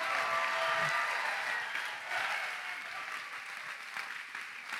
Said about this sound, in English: If you believe that, give the Lord a clap and a shout like you got energy. Stir it up, San Marcos.